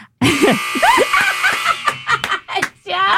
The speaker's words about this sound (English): Oh, I love that you had that buzzer kind of like ready.